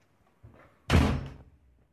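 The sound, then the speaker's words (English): A door upstairs slams shut with one heavy, booming bang, preceded by a soft creak or thud and trailing off in a brief echoing rumble. No voices. “Suddenly, a door slammed from upstairs, and the sound made her bolt up on the couch, listening.”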